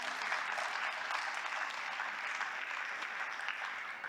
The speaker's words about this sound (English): It's okay to give the Lord a clap offering for something like that.